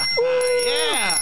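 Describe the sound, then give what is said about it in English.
A voice imitates a bicycle bell ring: one sustained, steady tone that slides up at the start and falls away at the end, fairly loud. “I didn't bring my own bell. I'm going to do that next time. You got to ring your bell, baby.”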